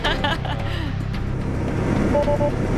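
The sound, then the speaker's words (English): A car's warning chime sounds in a couple of short, thin beeps near the end, triggered because the driver is pressing both pedals at once, over a steady low engine rumble inside the vehicle. “By the way, so beeping at you because you're pressing both pedals, because that's a race car driver thing.”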